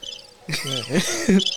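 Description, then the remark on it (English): A cricket chirps in a steady, high-pitched trill, while a person's voice breaks in midway over the chirping before the insect sound carries on at the end. “The cricket was on for like 5 minutes.”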